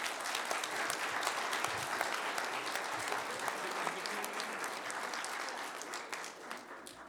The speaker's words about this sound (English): And it's just exciting to see them stepping up all as leaders. And I'm really excited about that. Give the youth a round of applause.